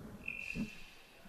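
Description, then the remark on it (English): A thin, high-pitched cricket chirp rings out briefly, then trails off faintly over a quiet, low background rumble. No one speaks. “Yep, crickets.”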